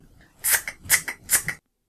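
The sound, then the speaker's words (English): A voice imitates scissors cutting, as a vocal charade for the word cut, with three quick, crisp snipping bursts, each a sharp hiss followed by a smaller click, evenly spaced, then silence. “The correct answer is cut. Sounds a little like scissors, right?”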